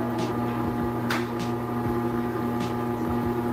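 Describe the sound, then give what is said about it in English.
A Cuisinart ice cream maker's electric motor hums as it churns macadamia nut ice cream, with strong low tonal bands, a continuous drone broken by faint periodic clicks and a few brief higher scraping bursts. “It's Cuisinart for crying out. So I'm going to turn that on.”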